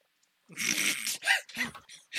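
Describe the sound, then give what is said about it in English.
A dog barks loudly: one long, rough, noisy bark followed by three shorter, sharp barks in quick succession, with no talking. “Dogs bark, it's loud.”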